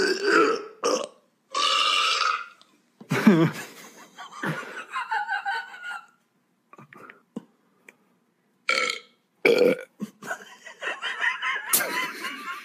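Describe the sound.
Several loud burps ring out one after another in a burping contest, with laughter and chuckling breaking in between them and some brief murmured voices.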